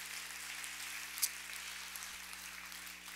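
A crowd applauds with steady, dense clapping that runs the whole time, a soft rain-like patter over a low electrical hum, fairly faint and with no one speaking.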